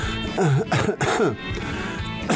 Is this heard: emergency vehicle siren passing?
no